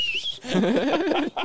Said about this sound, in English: You whistle at her. Yeah.